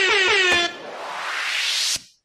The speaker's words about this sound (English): What do I got? I got an air horn? I got it.